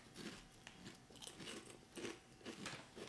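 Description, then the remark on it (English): Crunchy chewing of Zesty Nacho kale chips, a steady run of crisp bites breaking apart with bright crackly bursts at a regular rhythm, loud, with no talking over it. “Listen up, everybody. You're about to hear some serious chewing.”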